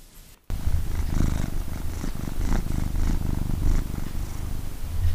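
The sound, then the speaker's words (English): A cat named Storm purrs steadily, a continuous low rumbling vibration with a gentle rhythmic pulse that starts abruptly after a brief quiet moment and continues without any talking. “Purring by Storm.”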